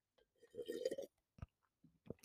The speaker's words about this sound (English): And before I can even go any further, please let me take a sip of my wine.